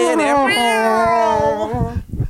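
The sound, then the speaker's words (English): A single long, drawn-out cat meow, loud and close, holding a steady wavering pitch for over a second before cutting off into brief low rustling noise. “Get that Scar Cat out of here.”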